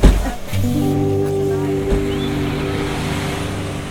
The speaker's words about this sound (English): It was a sunny day, height of winter, though you'd never guess it, and I got off of the 444 bus at the foot of Masada.